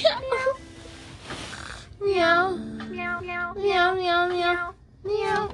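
A series of drawn-out, wavering meows from a little cat, about four in a row with short pauses between, fairly loud, preceded by a brief higher cry and a breathy rustle.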